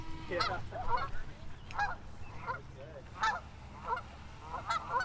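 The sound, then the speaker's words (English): A flock of geese honks repeatedly in overlapping, irregular bursts on the water as boats herd them together, over a steady low rumble like a motor. “Watching all these boats herd these geese in here like sheep.”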